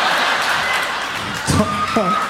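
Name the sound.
audience clapping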